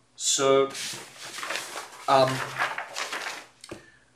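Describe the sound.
A huge sheet of paper from a giant scroll rustles and crinkles for a few seconds in a steady, papery hiss of bursts, with a couple of short voiced sounds mixed in.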